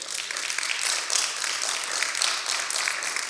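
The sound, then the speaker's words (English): A crowd claps steadily, a dense wash of overlapping hand claps that holds at an even, fairly loud level for a few seconds, with no voices. “Come on, give the Lord a hand clap right there for that.”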